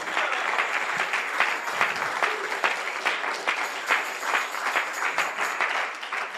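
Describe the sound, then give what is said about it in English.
An audience applauds the Lord in praise, steadily for several seconds, a dense, even wash of many hands clapping at once, sustained at a fairly loud level without a break. “Hallelujah, with a great round of applause unto the Lord.”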